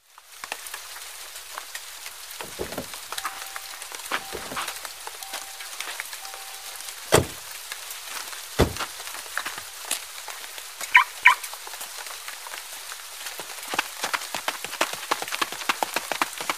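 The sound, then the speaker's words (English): Steady rain patters on a hard surface, a dense crackling hiss broken by louder individual drops and a few heavier thuds. No one speaks. “We'll ask them for directions, see if the rain gets worse, and then leave.”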